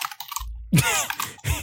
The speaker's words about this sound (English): Excuse my typing real quick while I check up something.